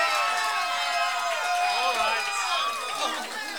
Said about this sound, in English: I've twisted some arms, folks, and I know the audience is all out in the boonies out there just screaming and hollering.